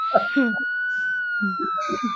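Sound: police siren sound effect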